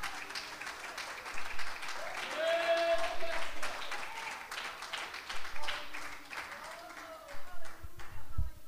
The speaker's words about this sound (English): Clap your hands to the Lord right now.